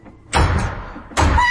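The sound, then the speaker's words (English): Two heavy thuds at the front door, like firm knocks or a door banging, the second following the first after a short pause, with a brief ringing tail and no voices. “It's all right, that's the front door.”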